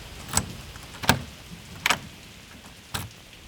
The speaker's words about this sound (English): Locking the front door